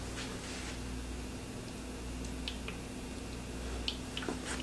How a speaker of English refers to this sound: So yeah, like the previous mister, it is quiet. You get kind of that splashing sound, which is what I'm talking about. I think that's kind of unavoidable with misters.